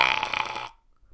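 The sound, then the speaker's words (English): A princess lets out a single loud, drawn-out belch with a rough, throaty rasp, lasting well over half a second before cutting off into near silence. “it's no way to behave in front of a princess. Fiona belches”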